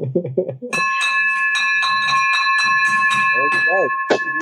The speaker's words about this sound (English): Wow. The victory bell has been rung for these two.